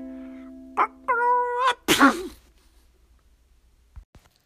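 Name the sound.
sneezing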